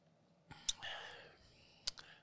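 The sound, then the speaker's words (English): Quiet ASMR sounds from inside a mouth: two sharp wet clicks about a second apart, with soft breathy whispering hiss filling the gap between them, no clear words. “This one's all about hearing the inside of my mouth.”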